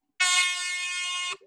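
A single loud, harsh game buzzer blares steadily for just over a second, then cuts off abruptly, with no talking over it.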